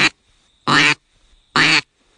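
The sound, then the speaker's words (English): Three loud, raspy hen-duck quacks from a triple-reed duck call, evenly spaced about a second apart, with a faint steady high hum in the gaps. “Not a lot of air required to make that reed really work. Sound like a real raspberry hen.”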